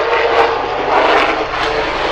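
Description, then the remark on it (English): A helicopter flies overhead near a hospital, its loud, steady engine roar layered over a rapid, rhythmic thudding of rotor blades that fills the whole moment, with no voices. “We'll let the helicopter go by.”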